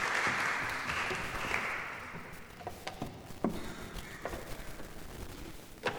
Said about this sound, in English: Thank you so much, guys. You are a fantastic job. Big round of applause. Thank you.